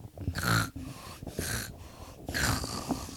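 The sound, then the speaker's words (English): A voice imitates loud snoring: three drawn-out, rasping snore sounds with brief pauses between them, fairly loud, with no talking. “The king was a very deep sleeper, and he snored a lot.”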